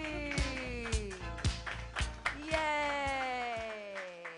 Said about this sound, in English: Thank you. Clap your hands together, everybody